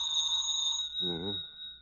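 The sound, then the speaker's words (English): A telephone bell rings continuously in a bright, steady shrill tone, loud, at four minutes after eleven at night, while a man's voice briefly speaks over it partway through. “Wouldn't want to lay a little bet why this phone's ringing at this time of night, would you?”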